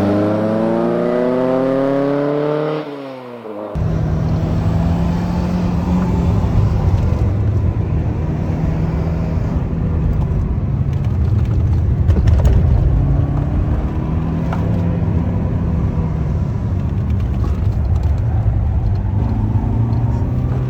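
A Mercedes 190 Cosworth four-cylinder engine revs up sharply, drops off, then keeps droning loud with its pitch rising and falling as the throttle changes, its sound all intake and mechanical with no exhaust note. No voices.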